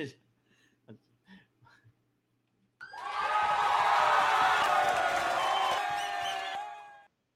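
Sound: audience cheering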